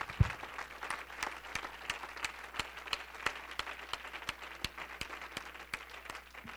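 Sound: audience hand clapping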